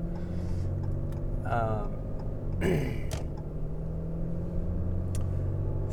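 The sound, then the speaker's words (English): Steady low engine rumble from inside a car moving along Varner Road, a small road, with a couple of fast vehicles whooshing past in quick succession; a voice speaks briefly over the road noise. “Whoa, people drive fast on these little roads.”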